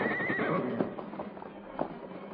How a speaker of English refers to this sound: a canyon whose sides were so steep that the masked man and his companions were forced to dismount and lead their horses down the perilous descent. Easy does it, Silver. Not too fast, old boy.